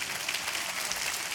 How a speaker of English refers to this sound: All right? You can clap your hands for that.